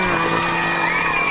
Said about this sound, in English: 10 year anniversary, which was busy. This episode will be released, and it will be basically a week before the release date of this. So happy drag anniversary. Yeah. Round of applause.